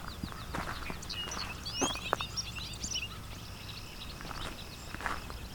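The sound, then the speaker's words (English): Clay-colored and grasshopper sparrows sing in a field along a hydro corridor near Westover, Ontario, thin high buzzy trills and scattered chirps, with soft footsteps crunching and a faint low rumble underneath. “And I'm hearing both clay-colored sparrow”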